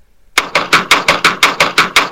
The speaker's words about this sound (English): We heard knocking.